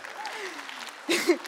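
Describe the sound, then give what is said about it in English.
A few scattered, light claps from an audience break out near the end, brief and uneven, after a quieter stretch of faint voice and room murmur. “We get like a few pitter-patters and they're like, oh, we're not clapping, sorry.”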